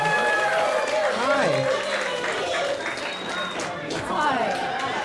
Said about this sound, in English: Wide right, make a round of applause